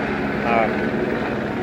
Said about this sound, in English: Fuck off, Chopper. Chopper 65.